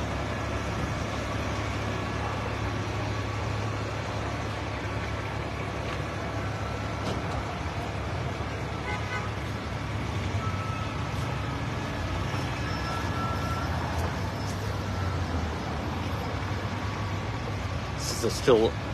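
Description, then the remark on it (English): Steady, dense rumble of bogged-down street traffic at an active crime scene in East Providence, cars and heavy trucks idling and creeping along, a continuous low engine drone filling the scene, with faint indistinct voices mixed into the background. “And with traffic, I don't think I'd be able to get anywhere anyway. Traffic is all bogged down.”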